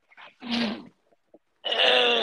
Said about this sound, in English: I'm so tired. I know, I'm like trying not to yawn so much.